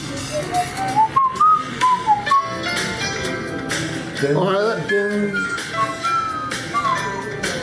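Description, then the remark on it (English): Someone whistles a bouncy TV theme tune, the pure tone gliding up and down through the catchy melody, clear over a busy backdrop of other sound. “I thought he was just doing a decent whistling job.”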